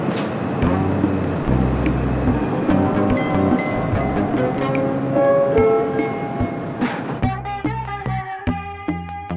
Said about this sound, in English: It is Friday, January 28th, 2022, and I'm about to get on the subway for the first time in 2 years. Stand clear of the closing doors, please.